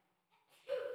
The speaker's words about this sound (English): Bless you.